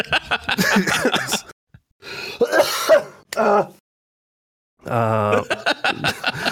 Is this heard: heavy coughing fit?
yes